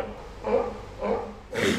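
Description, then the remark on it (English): An alarmed animal gives three short, breathy snorting sneezes about half a second apart, moderately loud, with no one talking. “That's a sneeze. You know, they're alarmed.”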